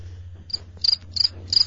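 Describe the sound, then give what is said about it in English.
Four short, high-pitched cricket chirps sound in a steady rhythm over a low constant hum, clear, with no voices present. “Give me the crickets”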